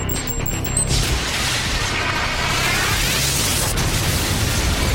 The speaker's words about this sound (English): And that's when Barker turns on the weapon and blows up a car without even opening a window.